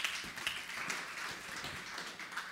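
A church audience claps in steady applause as two people are called up on stage during a sermon, a dense patter of many hands at a fairly even, moderate loudness throughout, with no voices on top.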